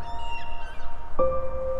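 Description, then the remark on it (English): A seagull calls softly on a beach, a drawn-out mewing cry that fades, then a second steady, tonal call rings out, both over a low, constant background rumble. “While breathing slowly and deeply, you hear the soft call of a seagull,”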